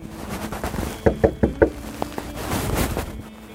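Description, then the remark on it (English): Four quick, evenly spaced knocks on the wooden door of a house at the end of a long, isolated dirt road, with steady wind-like background noise before and after. “I knock on the door three or four times before anyone answers.”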